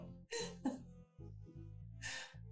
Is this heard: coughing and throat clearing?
yes